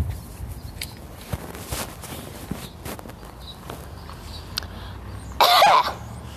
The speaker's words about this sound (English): Here comes the bus. Here comes the busted bus. Doing busted bus things in a busted bus world.